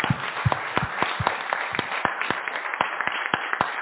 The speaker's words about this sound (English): Thank you so much. Can we give our panelists another round of applause?